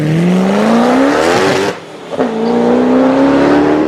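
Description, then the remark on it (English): A high-spec racing car engine on a track screams loudly at high revs, pitch climbing as it accelerates, cutting out briefly on a gear change, then wailing upward again. “You know, there's nothing like a really high spec screaming racing car on a track to get things going.”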